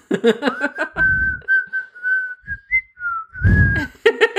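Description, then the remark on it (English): A person whistles a short, casual tune, one clear sustained pitched line with small wavering steps, framed by brief bursts of speech-like voicing at the start and end. “They start whistling away, like, yeah, like, no one's gonna just act natural, blend right.”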